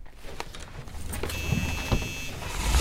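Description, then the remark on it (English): A van's engine rumbles low and steady as the van is moved to a better parking spot, with a thin high whine joining partway through and a few soft knocks; no one speaks. “Let me at least move the van to a better spot.”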